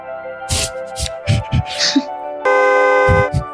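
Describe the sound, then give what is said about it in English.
A small horn, beeped by a man walking around at people on the street, gives one long, loud, buzzy honk lasting about a second, following a few short bursts of voices and noises. The honk is steady and bright with a nasal, brassy tone. “And the remainder of the video is just him walking around beeping his little horn at people.”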